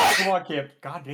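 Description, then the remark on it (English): One loud, close-up sneeze bursts out at the very start, and a man's voice follows right after it with a few short spoken words. “Bless you.”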